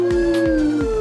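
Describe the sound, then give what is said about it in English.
A human voice imitates a monkey call: one loud, sustained hooting cry lasting about a second, pitch sliding slightly downward with a rhythmic pulsing wobble. “I did like a monkey that time, kind of.”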